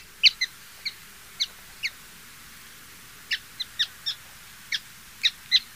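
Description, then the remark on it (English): A grayish miner (Geositta maritima), a small ground-dwelling songbird, gives a series of short, sharp chirping calls, some doubled, in two loose bursts separated by a pause, fairly clear against a quiet, faintly rumbling background in the Atacama Desert. “It's the grayish miner, Geocitta maritima.”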